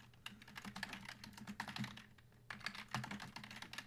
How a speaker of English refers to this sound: Using my loud-ass keyboard.